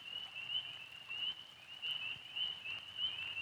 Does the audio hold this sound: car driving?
no